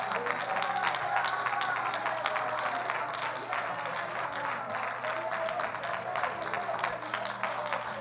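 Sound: audience clapping hands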